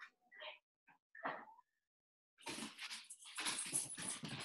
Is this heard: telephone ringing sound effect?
no